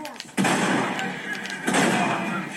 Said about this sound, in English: So what I would do is you simply look at the man, select, sawn off shotgun, and then...